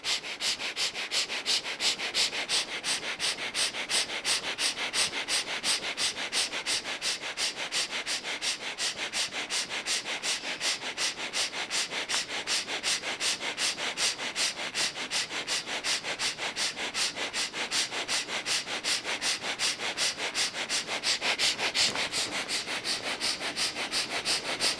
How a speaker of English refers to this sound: Focus, look inside the forehead. First point, keep looking there. And start quick and fast chest breathing. But keep looking deep inside the forehead.